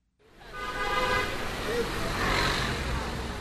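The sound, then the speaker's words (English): Car horns honk over a steady roar of busy street traffic in a Chinese city, with overlapping blasts and a dense wash of engine and road noise underneath. “As you enter Thames Town, the honking and chaos of Chinese city life start to fall away.”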